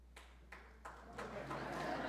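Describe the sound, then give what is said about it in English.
Scattered claps from an audience start a few beats apart, then thicken into steady, moderately loud applause over about two seconds. “Don't be clapping.”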